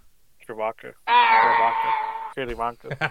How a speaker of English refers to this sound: I've always wanted to do a Chewbacca fucking sound effect, and I never can.